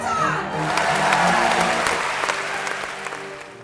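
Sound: crowd roaring and cheering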